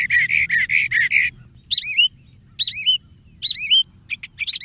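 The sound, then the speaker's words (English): A mockingbird sings alone, switching from a burst of rapid buzzy notes to three loud, rising slurred whistles, then a few quick chips, like a string of other birds' songs. “A mockingbird might imitate, in succession, birds as different as a bobwhite quail, a chat, a sandpiper, even a cardinal.”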